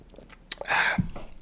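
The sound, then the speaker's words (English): A quiet sip from a can of Tecate beer: a light click, then a brief airy slurp lasting a fraction of a second, ending with a soft low gulp or thud. No talking. “So take a sip of the Tecate, too.”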